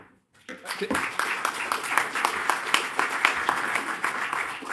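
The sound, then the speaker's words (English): A crowd bursts into applause after a short moment of silence, many hands clapping in a dense, steady patter that stays fairly loud and even to the end. “I was going to say keep your applause to the end.”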